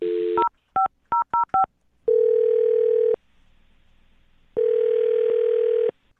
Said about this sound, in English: I'm about to dial her phone number. Here we go.